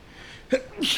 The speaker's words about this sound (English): Ooh. Bless you.